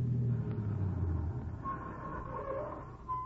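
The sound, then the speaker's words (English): A car engine rumbles, a heavy low drone that eases off partway through as a thin whining tone rises over it. No one speaks. “That car. Yes, I heard it.”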